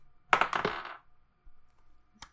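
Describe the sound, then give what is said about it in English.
Dice clatter and tumble across a hard table in a quick burst of rattling clicks lasting under a second, then settle, followed by quiet and one sharp click. The dice are rolled for an insight check in a tabletop role-playing game. “Roll me an insight also, actually.”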